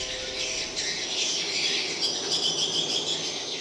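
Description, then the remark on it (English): A dense, continuous chorus of shrill, chirping recorded swiftlet cries played through speakers inside a three-story windowless concrete birdhouse in Malaysia in 2012, calling real swiftlets to come; steady and fairly loud throughout with no pauses and no voices. “These bird cries that fill the air are coming from speakers.”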